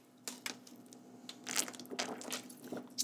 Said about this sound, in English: Sorry, I'm gonna drink another water here.